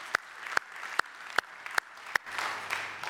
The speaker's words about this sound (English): But it was wonderful, and I'd just like you to give yourselves a clap, you know. Good job, church. Good job.